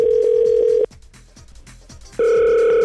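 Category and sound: signal or alarm, telephone ringing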